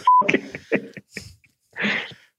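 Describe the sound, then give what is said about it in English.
A quick run of short electronic beeps, like telephone keypad tones being dialed, several in a row with brief gaps, followed by a rougher, noisier burst near the end. No one speaks. “So just a heads up, Lando asked for me to do Joey B as Liam Neeson talking to Derek Carr on the phone.”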